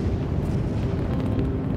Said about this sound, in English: A sea of journalists and members of the public watch from a safe distance as Freedom 7 prepares for launch. The engines ignite with a spectacular boom.